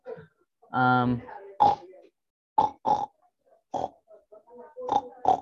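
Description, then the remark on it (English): A man standing on a table imitates a pig in a game of charades, voicing a series of pig-like grunts and snorty oinks, starting with a long harmonic squeal-like grunt followed by several short, punchy bursts spaced irregularly, fairly loud. “got on the table and immediately knew which animal he was going to imitate, a pig.”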